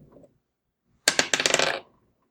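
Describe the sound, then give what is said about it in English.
Small dice are rolled for a perception check, landing on seventeen, rattling and clattering across a hard surface in a quick burst of rapid clicks lasting under a second, fairly loud, after a brief faint rustle and otherwise quiet. “So small the dice.”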